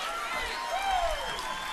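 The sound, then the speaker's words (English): A church audience claps steadily in a dense, continuous wash of applause, with crowd voices mixed underneath and a single voice rising briefly above the noise. “You might as well leave while everybody's clapping so nobody will see you.”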